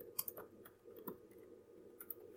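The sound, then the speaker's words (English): Quiet, irregular typing on a computer keyboard by the speaker: a handful of light, crisp key clicks scattered over a couple of seconds against a low steady hum, with no talking. “And yes, that's me typing.”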